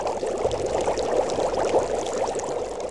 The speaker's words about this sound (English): He always kept his big pot on the fire, bubbling with oil.